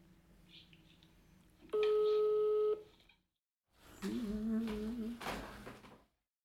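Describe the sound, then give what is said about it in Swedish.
A single steady ringback tone on an outgoing phone call, placed live, sounds for about a second, clear and fairly loud, followed by a short silence and then a muffled, clattering burst of line noise. “Ska vi se, nu ringer vi, det här är spännande.”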